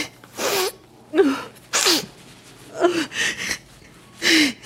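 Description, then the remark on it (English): Several forceful, hissing nose blows into a Kleenex tissue by someone with an arm in a cast, each a short breathy burst, with brief pained vocal grunts mixed in between them. “Why does it hurt more to blow my nose than does to move my arm?”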